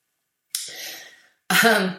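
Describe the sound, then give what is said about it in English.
Two rough coughs, one after another with a short pause between them. The first is breathy and fades out, the second is louder and more throaty. No talking. “I'm coughing in your ears right now.”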